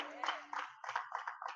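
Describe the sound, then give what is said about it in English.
A church audience claps their hands for God after a prayer, in a steady rhythm, about five bright bursts of massed clapping at roughly even intervals, with a faint voice at the start. “Give God a hand clap if you can.”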